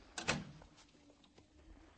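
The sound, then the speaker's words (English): A door opens with a short clunk and rattle near the start as a visitor comes in, then fades into quiet room noise with a few faint knocks. “There's no name card on your door. You want to come in and talk to us?”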